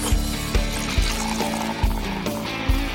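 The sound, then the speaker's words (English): Liquid glugs steadily from a bottle into a glass, a continuous pour with rhythmic low gulping pulses and a bright splashing trickle throughout. “It's time to pour yourself a drink”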